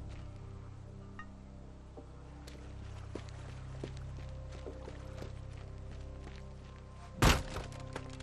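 A single loud, sharp thunk of a door being hit by mistake instead of opened, cutting through a low rumbling background with scattered faint clicks and knocks before it.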